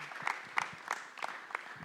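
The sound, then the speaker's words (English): A crowd of community members applauds one another steadily, many hands clapping in a dense, crackling patter with a few sharper claps standing out, sustained at an even moderate loudness throughout. “Like, clap for each other.”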